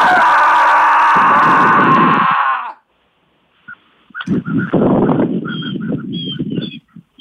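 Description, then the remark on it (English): Loud, harsh bird calls, a long raucous burst, then a pause and a second stretch of squawking, honk-like cries, fairly loud, with no talking. “Do I hear birds back there?”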